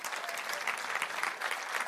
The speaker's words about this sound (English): Can you clap your hands like you mean it? Can you do that?